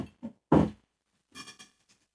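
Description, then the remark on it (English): A cat bumps and paws at the door of a home studio, making a few irregular thuds and rattles, one louder than the rest, with short pauses between them and no one talking. “Let's see who's wanting in the door.”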